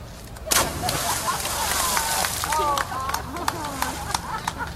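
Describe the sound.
A sudden heavy splash as a person does a cannonball jump into the Jordan River, followed by seconds of churning, spraying water noise while voices talk and call out over it.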